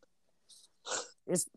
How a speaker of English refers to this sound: Bless you.